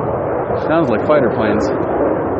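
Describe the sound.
A loud, steady rumble of fighter jets passing overhead fills the whole stretch, with a voice briefly speaking underneath the roar.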